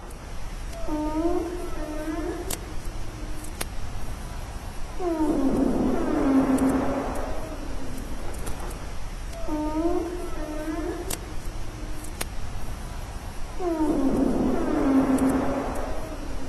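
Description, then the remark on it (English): Humpback whale social sounds: long, moaning, cat-like wails that rise and fall in pitch, repeating in two similar cycles over a steady low underwater rumble, with no talking. “So those are the social sounds of the humpback whale.”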